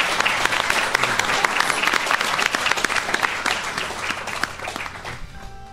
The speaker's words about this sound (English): So you guys have been an incredible audience. It's been a lot of fun. Thank you all. Big round of applause for our panelists. Thank you, guys.